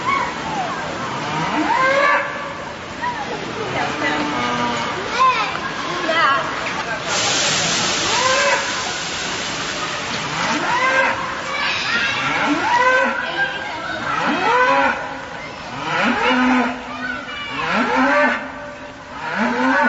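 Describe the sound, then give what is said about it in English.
Cows moo repeatedly in long, drawn-out calls, several animals overlapping, with a brief hissing burst in the middle and no one speaking. “Have you ever heard a cow mooing?”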